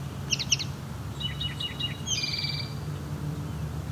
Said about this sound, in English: And our eastern towhee has changed songs. Something that's actually closer to the spotted towhee song, but this is not a spotted towhee.